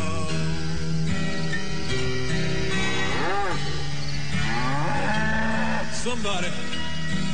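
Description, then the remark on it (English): A voice sings drawn-out cow-like moos, imitating cattle, over a steady musical backing; the moos bend and waver in pitch, recurring a few times and sounding fairly loud. “I'm a werecow. Moo, moo, moo. I'm a werecow.”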